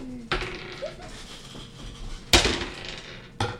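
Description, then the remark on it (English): Dice clatter onto a hard tabletop as players roll for initiative in a tabletop role-playing game, in three separate sharp bursts, each a loud knock followed by a short rattling tumble, with quiet pauses between the throws. “All right, everybody roll for initiative.”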